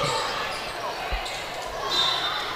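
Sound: basketball dribbling on court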